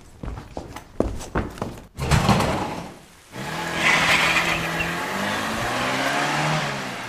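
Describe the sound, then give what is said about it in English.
Quick clopping hoofbeats give way to a burst of noise, then a car engine revs and drives off as a fleeing man escapes in it, its rising hum staying loud and steady to the end. No one speaks. “Curses! There he goes! Oh, what? He was in that car?”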